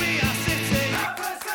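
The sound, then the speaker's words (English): A football crowd roars after a penalty goal makes the score 1-1, a dense, sustained wall of cheering and yelling with a few rhythmic surges in the first second before easing slightly. “The team are alive, which means the crowd are alive!”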